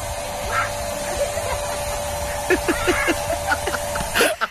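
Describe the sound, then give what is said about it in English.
A steady mechanical hiss and hum of a spray-tan machine runs throughout, while a man getting a spray tan lets out a series of short, yelping vocal bursts and gasps near the end. “that's the sound of … getting a spray tan”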